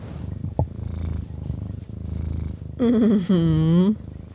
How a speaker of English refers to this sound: Oh, you can hear his purrs so well. Put it up by his mouth.